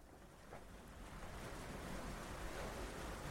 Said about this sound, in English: The water rises and drops every few seconds, and the columns are wide enough to sit on them comfortably and watch the waves.